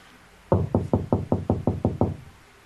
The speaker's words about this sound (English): I'm not knocking on the door anymore. I'm knocking on the bathroom door. I'm inside.